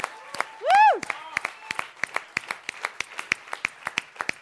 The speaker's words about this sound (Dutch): Let's give these guys a hand. Laten we een geweldig applaus geven.